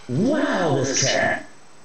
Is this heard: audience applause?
no